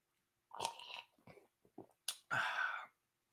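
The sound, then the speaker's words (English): Wet mouth sounds as someone gargles a sip of beer to taste it like wine: a few short slurpy bursts, then a louder, longer bubbling gargle lasting about half a second. No one speaks. “Did you just gargle that beer?”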